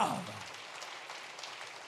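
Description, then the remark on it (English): A crowd claps together in a dense, steady patter, like rain on a roof, holding at an even loudness throughout, giving the Lord a hand clap of praise. A brief voice may sound at the very start. “I dare you to give the Lord a hand clap of praise that he's worthy.”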